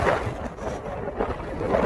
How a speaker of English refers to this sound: Listen to those waves, the wind going on. A pretty gnarly wave too.